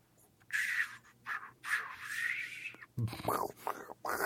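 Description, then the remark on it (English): A person imitates running water with their mouth: a few seconds of steady hissing and rushing breath noise, then several short, wetter gurgling bursts. “Here's the water noise.”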